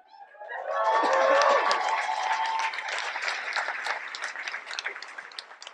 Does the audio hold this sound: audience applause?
yes